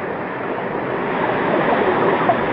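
A steady, continuous rush of churning water, like a vast body of water surging, of an underground ocean beneath the Earth, fairly loud and even throughout with no voices.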